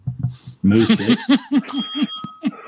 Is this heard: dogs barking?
no